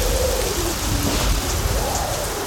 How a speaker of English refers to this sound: The same roof that's getting bludgeoned by hail. When the storm subsides